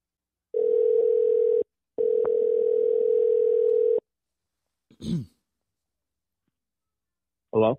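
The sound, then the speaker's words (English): A steady, loud electronic telephone tone sounds in two long bursts separated by a brief gap, a line ringing as a call is placed to a military member's number, followed by a couple of short handling noises. “All right, let's give this number a phone call.”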